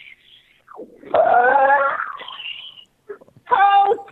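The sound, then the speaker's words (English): A voice imitates a car crash with a strained, wailing screech that bends in pitch, a rougher sputtering stretch, a brief pause, then a second loud, harsh vocal burst. “It was a huge car crash.”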